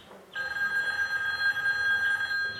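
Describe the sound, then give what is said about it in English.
A telephone rings steadily with a bright, sustained electronic tone, starting abruptly and continuing unbroken at a moderate level, with no talking. “Excuse me just one moment while I pick another quick phone call.”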